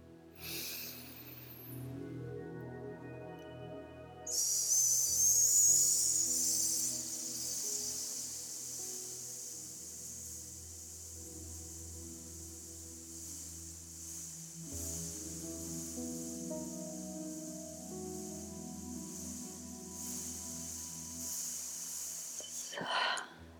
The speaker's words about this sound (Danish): Og pust langsomt ud. Og så prøver vi en sidste gang, hvor du virkelig bare trækker vejret godt ind og puster helt langsomt ud.